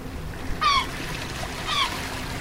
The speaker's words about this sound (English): So as you can hear, we're at the beach. We're recording a whole interview. I'm recording the sounds of the ocean and the sounds of the seagull and maybe the sounds of a crying baby up in the parking lot.